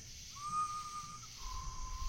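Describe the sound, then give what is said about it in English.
Someone whistles two long, steady notes in imitation of a human whistle: a clear higher tone held about a second, then a slightly lower one, over a low background rumble. “But for weeks, off and on, throughout a week, for weeks at a time, I would hear somebody whistling. And it sounded legit, like a human.”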